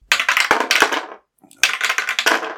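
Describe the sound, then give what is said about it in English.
Dice are rolled to decide who goes first, clattering and tumbling across a hard tabletop in two busy bursts of rapid clicking, separated by a brief pause. The rattling is crisp, with no voices. “Let's grab dice and roll to see who's going to go first.”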